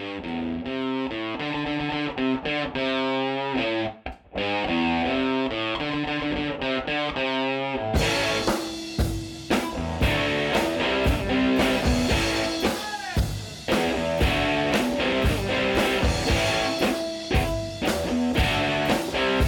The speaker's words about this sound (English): And coming up next, we've got our, obviously, album of the week. And you'll be hearing the music from that album in the breaks.